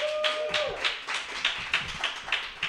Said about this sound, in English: Man, I'm excited about fighting through that applause, because I don't care.